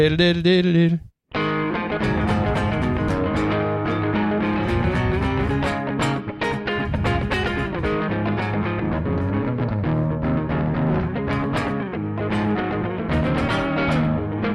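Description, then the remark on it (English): A twangy electric guitar plays a busy, continuous country riff with a very short, tight reverb, loud, starting after a brief pause and running steadily with picked notes and chords. “All right, now we'll check out the really short, kind of really short reverb.”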